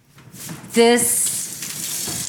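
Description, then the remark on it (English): Water boils steadily in a pot, a continuous bubbling hiss filling the short clip, briefly overlapped by a short voiced sound near the start. “So we gotta hand beat this, right? Well, while it's boiling.”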